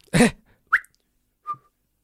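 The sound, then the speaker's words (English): A person whistles in imitation of a French traffic police whistle: a breathy blast, then a quick rising chirp and a short steady tone, three brief close bursts separated by silence. “Oh, you know, like those French traffic police that stand on like a little plinth with a whistle.”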